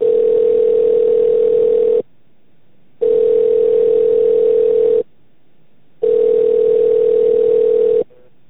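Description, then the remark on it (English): A telephone ringback tone plays as a call to Mill Creek Marketplace Giant Eagle is transferred to customer service: three loud, steady, mid-pitched tones, each about two seconds long, separated by brief silent gaps, with no one speaking. “Please hold while I transfer your call to customer service.”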